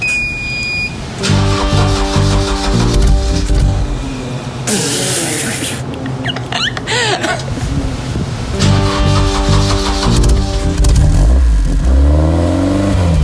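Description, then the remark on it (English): A car engine turns over and comes to life, then revs loudly and repeatedly, with rising and falling tones and a brief burst of hissing partway through. “Okay, should we start her up?”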